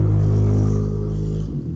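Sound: motorcycle passing by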